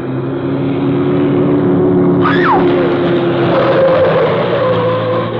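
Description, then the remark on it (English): A car engine drones steadily and loudly as the vehicle moves swiftly down a mansion's drive toward the street at night, with a brief rising whine partway through and no voices. “As she watched, car lights suddenly showed far back in the drive, moving swiftly toward the street.”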